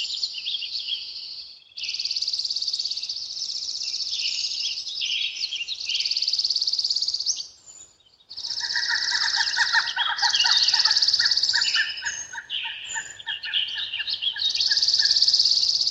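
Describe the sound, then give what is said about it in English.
A pileated woodpecker flying overhead calls in a loud, repeated series of notes over a steady, high-pitched buzzing chorus of insects or small birds; no one speaks. “A pileated woodpecker just flew over us.”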